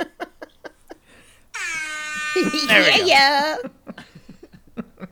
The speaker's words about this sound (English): You have to do an air horn for my mom now because you did one for me.